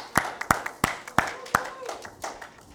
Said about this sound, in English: So can we just give Duncan a round of applause this morning?